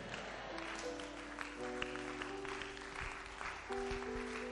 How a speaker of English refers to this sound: If you are clapping your hands, clap it well.